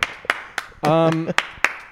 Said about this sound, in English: standing up and clapping